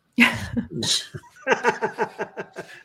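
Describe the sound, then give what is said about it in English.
A dog lets out a rapid series of distressed, honking snorts, fairly loud, the bursts coming in a quick, steady rhythm after a few rougher gasps. “Your dog gonna be okay? Yeah, I don't know what's going on over there.”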